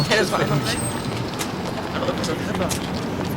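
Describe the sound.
A bus rumbles in, its low engine drone steady under busy street noise, with faint voices and a brief high whine partway through.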